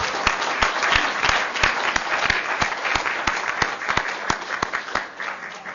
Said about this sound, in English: here today, …. Can we give them another applause?